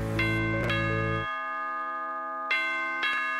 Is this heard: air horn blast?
no